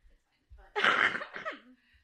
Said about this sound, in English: It's just a little cough.